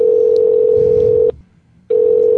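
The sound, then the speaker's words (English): A loud, steady telephone dial tone hums for over a second as a call is placed, drops out briefly into near silence, then resumes just as strongly. No one speaks. “I'm going to call here. Wes. Because we did say we were going to call him.”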